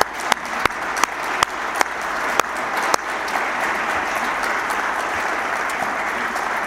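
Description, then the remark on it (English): A roomful of people in a church claps steadily for the church's volunteers, the applause building from a few sharp individual claps into a dense, sustained round that fills the space. “Would you just please stand, all you people who have done some work, and let's give them a great round of applause here.”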